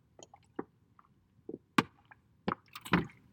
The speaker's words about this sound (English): Like, actually, I need some water right now. Sorry, you're going to hear my water bottle. Anyway, yes, it's plastic as well.